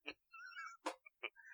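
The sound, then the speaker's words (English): An owl hooting: a high, wavering whistle-like tone held for about half a second, set among a few sharp clicking taps, fairly quiet and with no talking. The hoot comes from a small owl on a perch. “And then following the sound, you find yourself face to face with a small owl on a perch.”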